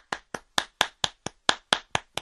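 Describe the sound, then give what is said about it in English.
A single person claps ten times in a steady, fairly quick rhythm, each clap sharp with a short decay, and no talking. “I hope that's you clapping your hands.”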